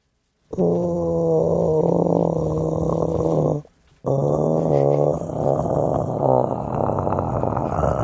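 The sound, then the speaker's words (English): A voice does a loud imitation of a cat's purr: a rough, rumbling drone held for about three seconds, a brief pause, then another wavering stretch of purring. “And I did this purr for it.”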